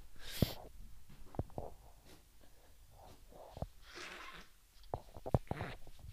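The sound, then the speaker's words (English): Someone blows their nose in several short, breathy bursts, with one longer honking blast in the middle, amid scattered clicks and faint rustling. No one speaks. “Blow my nose.”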